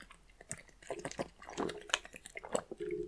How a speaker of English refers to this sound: Hold on, I'm going to have some water.